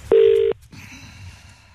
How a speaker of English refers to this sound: Oh, no, I'm going to dial up someone else and it won't be him.